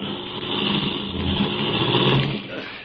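A car engine revs and rumbles for a few seconds, a steady motor drone with slight rises in pitch as the vehicle pulls up to block the road as it starts to rain, no voices.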